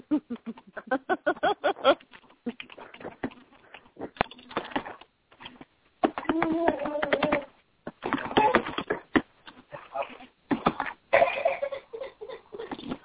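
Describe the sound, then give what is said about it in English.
Rapid, irregular keyboard typing, fairly loud, with bursts of clacking keys and short pauses between them, while occasional murmured, laugh-like vocal sounds mix in. “I probably should move my phone elsewhere so you guys don't hear the typing or anything, but oh well.”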